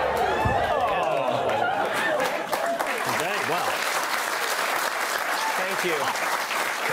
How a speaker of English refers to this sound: You're getting applause for getting out of a wetsuit.